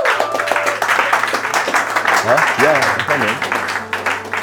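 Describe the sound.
Several people clap in a dense, steady patter for several seconds while voices call out and whoop over the applause, with a low steady hum underneath.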